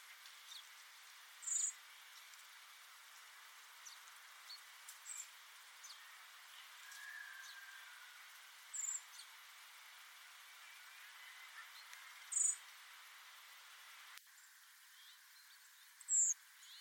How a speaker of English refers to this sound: So first you'll hear blackbird, and then you'll hear redwing, and then you'll hear the two calls sort of side by side a couple of times as well. See if you can hear the difference.